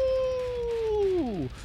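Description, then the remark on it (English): A single wolf howl holds a steady, mournful pitch for over a second, then slides downward as it fades, fairly loud with no other sounds around it. “And you're …. Ow, ow, ow.”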